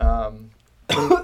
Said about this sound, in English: coughs. Inhale kombucha. Sicknesses. Death by kombucha.